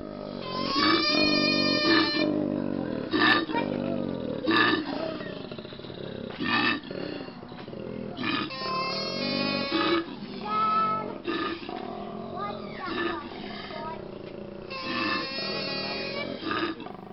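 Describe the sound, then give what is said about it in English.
Deep, rasping bellows repeat in long rhythmic bursts, each a snoring inhale followed by a resonant growling exhale, loud with no talking: a koala's bellowing growl. “And hear the sound, the surprising sound of the koala.”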